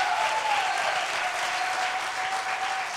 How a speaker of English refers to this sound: If you believe that, clap your hands and praise God.